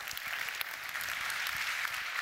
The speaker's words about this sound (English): Will you applaud for that? That's good stuff.